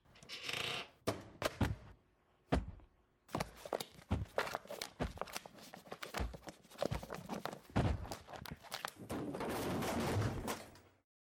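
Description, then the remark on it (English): A shelf tips over and its contents clatter down in a long, irregular burst of sharp knocks, thuds and scraping crashes, loud, with no voices. “Did you just knock that shelf over?”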